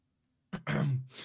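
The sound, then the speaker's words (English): A single throat clearing: a short glottal catch followed by a rough, rumbling rasp and a breathy tail, with no talking around it. “You gather up your courage and clear your throat.”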